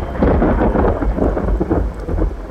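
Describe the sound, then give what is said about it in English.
A loud boom of thunder rolls across the sky as a deep, sustained rumble, with a steady rain-like hiss underneath and no voices. “Thunder boomed across the sky.”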